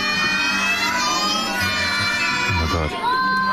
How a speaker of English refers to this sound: but one child decided to sing very loudly, so much so that they screamed all the way through Silent Night. Just listen to how loud this one kid is.